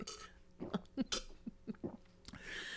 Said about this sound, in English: Excuse me. Sorry. Damn. Oh, my bad. Okay. I got a little excited. I really apologize. I didn't mean to burp.